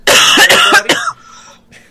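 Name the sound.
coughing fit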